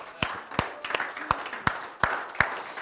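Scattered applause from a small crowd for the mothers standing up: a handful of sharp, crisp claps ring out over softer, uneven patter, moderately loud, with no voices.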